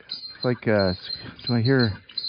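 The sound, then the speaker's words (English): Squeaking tricycle wheels approaching from the distance: two drawn-out, wavering squeals with a rising and bending pitch, fairly loud, separated by a short pause, with a faint high hiss throughout. “Squeaking wheels, or it's like a tricycle approaching from the distance.”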